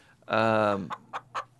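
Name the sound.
chicken clucking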